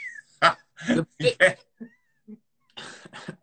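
A cat meows and yowls in a quick series of short, sharp bursts, fairly loud, followed by a brief pause and two more harsh cries.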